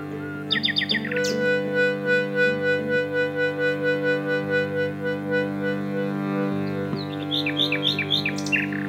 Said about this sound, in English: You describe something about the way the nightingale sings, which was about silence, that there is as much power to the silence in the nightingale song as there is to the notes that it sings,